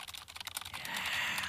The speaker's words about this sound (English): I enjoy it sometimes when we're joking around and you do the typing on the microphone. Like you're typing. No, not that, but like the keyboard thing.